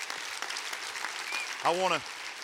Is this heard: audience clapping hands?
yes